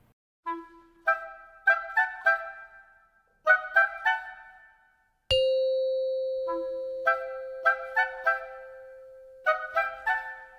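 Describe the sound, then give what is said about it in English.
A doorbell chime in a home plays several short melodic phrases of bright, ringing notes that decay quickly, with a long sustained tone midway through. It is clear, with no talking. “stirred from his afternoon nap by a small chime that echoed throughout his home, the doorbell.”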